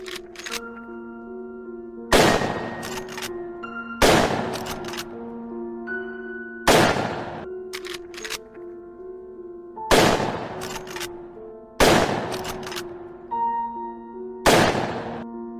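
Six loud shots from a Marlin lever-action rifle ring out at steady intervals, each followed by a couple of sharp metallic lever-action clicks, over a steady humming tonal drone.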